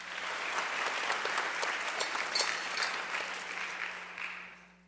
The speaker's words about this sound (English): Let's give our choir another round of applause. That's great.